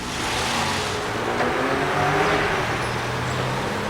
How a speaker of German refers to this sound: Ein Streifenwagen rollte durch die Burgstraße und hielt vor dem Haus,